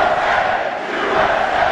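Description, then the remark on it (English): A big crowd in a basketball arena roars and cheers at statements by the president in a loud, unbroken wall of noise that holds steady for under two seconds, with no single voice standing out. “And those kind of statements gets the crowd fired up.”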